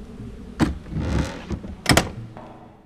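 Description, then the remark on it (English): A door in an all-steel house is pushed shut against the wind: a sharp knock, a rough scraping slide, then a heavy double thud as it latches, with a low hum trailing after. “Oh, close the door. The wind makes the steel howl.”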